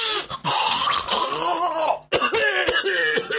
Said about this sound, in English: And also, I wish to apologise, but this is about 2 weeks after the SFX Weekender, and I'm still suffering from snuffles and coughs, so I do apologise if you hear a lot of...